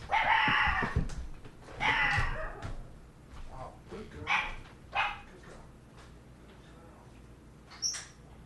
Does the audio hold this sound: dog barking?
yes